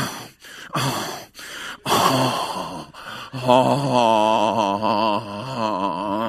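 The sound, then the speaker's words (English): A voice imitates labored breathing: a few sharp gasps in quick succession, then a strained, wavering moan-like wheeze that stretches out for several seconds. “And I start getting a breathing disorder.”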